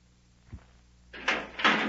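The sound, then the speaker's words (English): A living compartment door shuts with a soft low thud, followed by two harsh scraping, rattling bursts like a bolt or latch being slid into place to lock it. Fairly clear, with no talking. “Just get back in that living compartment and lock the door.”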